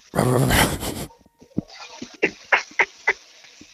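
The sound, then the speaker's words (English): A person imitates a dog: one long, harsh, raspy growl, then a quick run of short, sharp barks and yips at an uneven rhythm. “I thought you were barking.”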